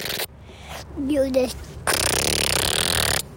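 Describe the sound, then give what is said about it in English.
A voice imitates a motorcycle engine with buzzy lip and mouth noises: a short pitched, wavering hum, then a long loud rasping blast of breathy noise before it cuts off. “He was trying to teach me how to do proper motorcycle sounds, which is something that I've never been very good at.”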